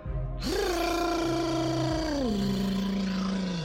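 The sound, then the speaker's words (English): A loud, thunderous roar of a massive black dragon soaring overhead rises sharply, holds for a few seconds over a deep rumbling bass, then slides lower in pitch as it fades out. Nobody speaks. “A thunderous roar echoes overhead.”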